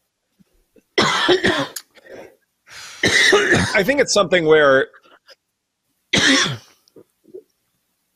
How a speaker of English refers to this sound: I had a coughing fit. I didn't want you to watch me.